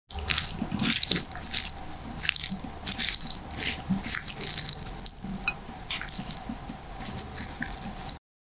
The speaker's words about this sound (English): I have poured the fish sauce all over the dish, and now let's mix it.